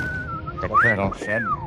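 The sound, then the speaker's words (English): A person whistles a steady, fairly loud tone that glides up and then slides downward, mimicking a falling bomb, with some vocal sounds mixed in underneath. “They're dropping whistles on us again, Sarge.”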